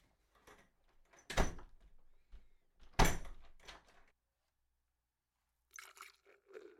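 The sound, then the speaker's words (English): Beer being poured into a glass: two sharp knocks and rustling handling sounds, a pause, then a brief gurgling, fizzy pour. No one speaks. “Do you want it? Sure. Pour it in my glass.”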